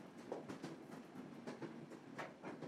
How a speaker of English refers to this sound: The train pulled slowly into the town of Malleg, the last sigh of white steam. The rails squeaked softly, and the train came to rest with a slow hiss.